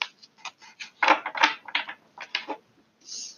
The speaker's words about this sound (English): I am shuffling the Modern Witches Tarot based off of faith. We will go from here.